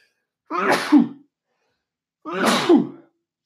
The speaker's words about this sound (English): Man, I feel a sneeze coming on. 1 second.